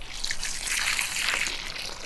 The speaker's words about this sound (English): let's get some water on that and then it's job done.